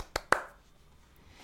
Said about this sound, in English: Here's to you, Matthew Perry. You are definitely a big dint in the zeitgeist of pop culture, and I give you 3 claps.